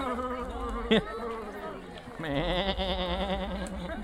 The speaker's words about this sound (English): Is that the sound the goats make? Like an ooh. It's a goat ghost.